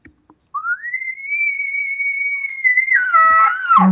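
A bull elk's location bugle, given to find other elk: one long, high, clear whistle that rises and holds steady for a few seconds, then breaks into a rougher, lower grunting finish.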